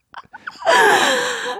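A few quick, sharp intakes of breath build up to one loud sneeze that bursts out and trails off over about a second, with no talking around it.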